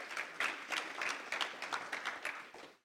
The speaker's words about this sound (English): So give her a warm round of applause. Go for it.